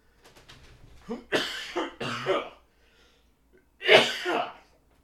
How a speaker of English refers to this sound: I'm going to cough.